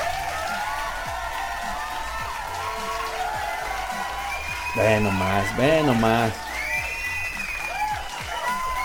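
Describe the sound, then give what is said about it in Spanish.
A crowd claps and cheers steadily for several seconds in honour of porn star Destiny Dixon, with a loud whooping shout rising in the middle. A voice briefly speaks over the noise. “Un pinche aplauso.”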